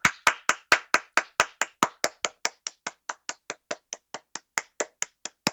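A single person claps for a musician after her performance, about twenty-five sharp, crisp claps at a quick even pace, gradually softening before a brief pause and a few final claps, with no voices.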